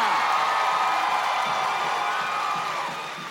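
A live audience breaks into sustained applause with scattered cheers and whoops, a dense, loud wash of clapping that holds steady before easing off slightly at the end.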